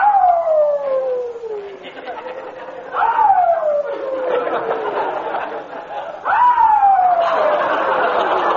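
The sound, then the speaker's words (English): A new puppy in a garage howls very late at night, three long, falling wails one after another, fairly loud, with a busy, rough background noise running underneath. “It seems the new puppy doesn't like his bed in the garage. Listen.”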